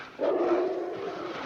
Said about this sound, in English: You think it's a dog? Oh, what is it? Yeah. It's a sheepdog or something.